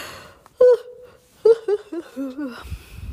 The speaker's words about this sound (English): But in the afternoon, oh gosh, I just lost my place when I yawned.